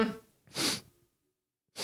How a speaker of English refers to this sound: There's a couple smug sniffs for how I feel about this person's name.